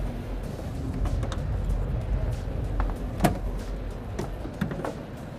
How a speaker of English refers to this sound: First, I pull over somewhere safe, get out, go to the back. I open both doors.